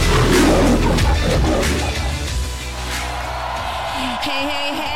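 A loud big cat roar bursts out at the start, deep and rumbling, then trails off into a lingering, rougher growl as the sound fades.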